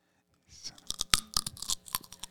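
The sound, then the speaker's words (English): Crisp crunching of a bite of raw carrot, a rapid series of sharp, dry cracks over about two seconds, fairly loud and heard on its own without talking. “You know I'm going to answer you with a crunch instead of real.”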